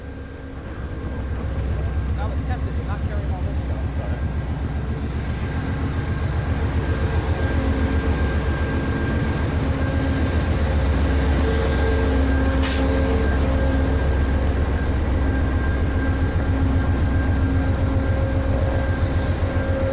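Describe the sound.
A GE Genesis diesel locomotive idles steadily in the distance at Santa Fe Depot while passengers queue to board, its deep rumbling engine and droning tones holding constant for the whole stretch, with faint voices audible in the background.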